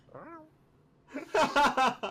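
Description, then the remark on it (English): A person imitates a cat's meow: first a soft, short rising-and-falling cry, then a louder, choppier string of voiced bursts. “That was like a cat noise. Was it a meow?”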